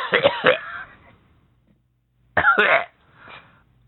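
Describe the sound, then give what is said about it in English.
Two quick, harsh coughs, a silent pause, then another rough cough followed by a fainter, softer one trailing off. No talking. “Quit that cough and get your shit together.”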